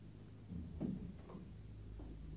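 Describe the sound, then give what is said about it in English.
A door is pushed shut with a soft, muffled thud and a brief creak of movement, heard once against a quiet background hum. “Just shut the door.”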